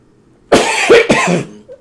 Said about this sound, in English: excuse me, this coughing. I'm trying to get through. Hopefully it'll clear up.